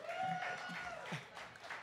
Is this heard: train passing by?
no